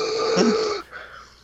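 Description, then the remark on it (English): One loud, raspy, wheezing breath, lasting under a second with a whistling tone running through it, then near silence. “Gee, sounds like you've got emphysema.”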